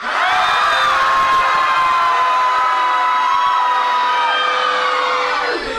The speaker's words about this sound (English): Now this is the real thing. So you just want to scream. Don't hurt yourselves, though. Stage scream.